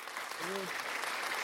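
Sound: applause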